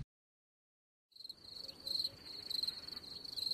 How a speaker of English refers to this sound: We need the cricket sound. Yeah, the little, you know, you need the sound effects. I have it. I just need to bring my iPad in and hook it up to the board. Yeah, you do. You knew. Oh, you need to. You really do. I put the crickets in there.